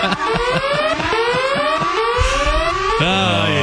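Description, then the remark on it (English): A loud alarm siren wails steadily upward in pitch for several seconds, its bright harmonic tone sweeping higher before abruptly jumping to a new, shriller pitch near the end. “Where's the alarm? Oh, hold on. I got to get the alarm.”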